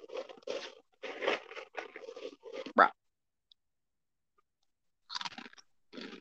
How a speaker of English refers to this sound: Bro, what you munching on, my man? I'm trying to talk to you and you're like, Okay, what are you munching on? goldfish.